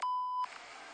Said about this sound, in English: Your phone was just ringing, and we just called it, though.